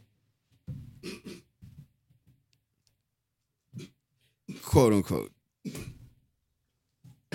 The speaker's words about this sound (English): I got him coughing. I told him I'm ready to part. I told him I'm ready. Now he's choking. Bro, you almost drowned me.